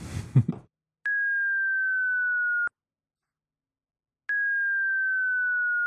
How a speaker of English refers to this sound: Audio tones means playing audio that they think the aliens will recognize. To give you an example, here is a 10-second clip of a 25-minute YouTube video titled CE5 Contact Tones Volume 1 and Volume 2.